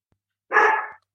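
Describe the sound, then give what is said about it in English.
A single loud, fairly sustained bark from a female dog, standing alone with silence before and after and no talking. “Whose dog was that, Barkins?”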